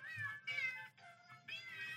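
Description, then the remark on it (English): A novelty birthday greeting card plays a string of four recorded cat meows back to back, each a high, bright, drawn-out mew with only brief gaps between them, loud with no talking. “Put it up to the microphone. Meow, meow, meow, meow.”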